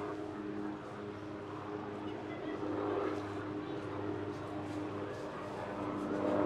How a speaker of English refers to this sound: Restart, the helicopter comes over. That's a low kick. All sorts of aircraft here at Mascot. You can hear it buzzing across the top of the field there.